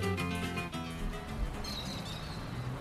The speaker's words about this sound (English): It may be a sprawling and industrial city, but wherever you are in Sao Paulo, Brazil, you can't escape the sound of birds. In this density, each building echoes with the sound of their calls.